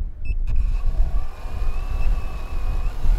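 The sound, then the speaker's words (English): A hexacopter camera drone's blades whir steadily as it is released and takes off, a high motor whine with slowly shifting pitch riding over a constant low, rushing rumble, with no voices. “Jennifer set the hexacopter blades right. Whirring.”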